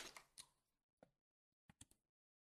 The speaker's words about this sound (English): And for those that are listening, I drew a tree on a piece of paper, a stick tree, a stick figure tree, if you will.